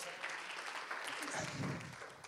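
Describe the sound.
A crowd claps for a volunteer after a frisbee-catching demonstration, a dense, continuous wash of applause, with a voice or cheer rising briefly partway through before the clapping carries on.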